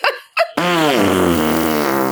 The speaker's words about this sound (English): So the bags were kind of wet and pretty heavy. And when I hefted one up from the pallet, I ripped a really loud fart.